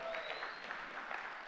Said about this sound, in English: If that sounds good for you, give the Lord a hand clap right there.